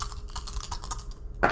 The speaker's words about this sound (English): Let's roll the dice. The dice of life.